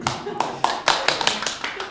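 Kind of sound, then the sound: crowd, applause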